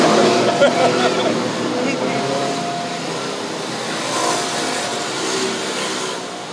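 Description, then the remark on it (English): A loud, raspy scooter engine with a noisy exhaust revs and drones steadily for several seconds, swelling slightly as it passes, with muffled voices underneath. “That's the loud pipe scooter game.”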